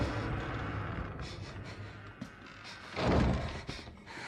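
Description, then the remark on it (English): A cabin door slams shut once with a heavy, reverberant thud partway through, set against a low, steady droning ambience and faint scattered knocks. “Oh, especially ones that doors just shut in front of you.”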